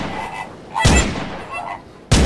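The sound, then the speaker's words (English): Two loud gunshots from a gun ring out in thick fog over a faint background hum, the first with a lingering ringing tail and the second cracking sharply about a second later. “You can't fix every problem with a gun.”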